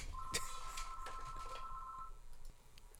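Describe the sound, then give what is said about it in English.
A phone rings with an incoming call, a steady electronic tone lasting about two seconds, fairly clear, over faint background clatter and room noise. No one speaks. “Oh, God, somebody's calling me on the phone.”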